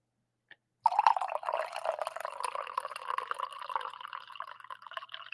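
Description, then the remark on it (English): Coffee pours steadily into a cup, a smooth, continuous gurgling stream that starts abruptly after a faint click and runs unbroken to the end, its tone rising slightly as the cup fills. “I felt like that one was just a smooth pour.”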